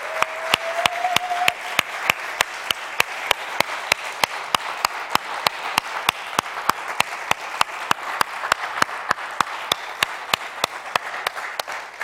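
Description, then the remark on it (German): Loud, sustained applause from a crowd for parents, with sharp claps landing in a steady, even rhythm throughout. A brief high tone sounds near the start, and no one speaks. “Ihr lieben Männer, ihr lieben Kinder und Jugendlichen, die ihr Eltern habt hier, lasst uns ihnen einmal einen kräftigen Applaus geben, denn sie haben es verdient.”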